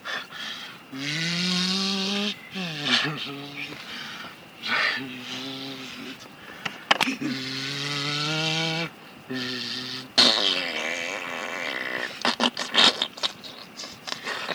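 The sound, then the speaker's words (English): A voice imitates a car engine that is out of gas trying to start, with several buzzy, droning sputters that rise and fall in pitch, then gives way to rough, choppy rattling noises that falter and stop. “What's wrong with our engine? What's wrong with the car?”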